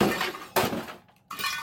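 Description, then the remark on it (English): An old-style plastic radio smashes apart in three loud crashes with harsh cracking and rattling debris, then a brief lull before a final burst of breaking. No voices. “The radio was broken. The aerial snapped clean off. The plastic casing smashed and half the inner workings hanging out.”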